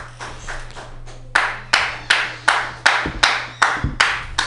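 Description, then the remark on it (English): An audience at a stand-up comedy show claps for the first comic, first in a loose patter, then in a steady unison rhythm of loud, sharp claps about three per second, with no voices over it. “Everybody, start applauding right now for your first fucking comic.”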